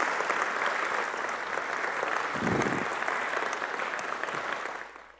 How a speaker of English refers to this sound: I know we have celebrated the dads already a little bit, but with every great dad in this house watching M by live stream, can we give them a great round of applause? Can we bless all the great dads here on Father's Day?